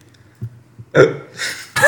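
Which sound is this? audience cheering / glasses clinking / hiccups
hiccups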